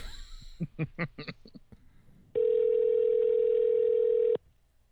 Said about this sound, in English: See if you tell me you hear his phone ring or not. Oh, yeah, I hear it.